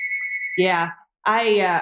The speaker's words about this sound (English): My phone's ringing here in the background.